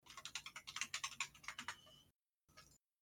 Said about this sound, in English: See if we can hear you typing. I know, I switched up to a much louder keyboard.